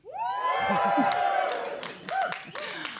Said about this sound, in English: Now, to elaborate for those listening at home, we're here in London in front of an audience of people looking to be entertained. So they know that I'm not lying, can I ask everyone in the audience to give a big cheer?